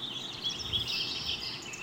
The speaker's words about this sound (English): In the last couple of years, I've developed an appreciation for birds, mostly because I can hear birds nesting in a tree outside my house.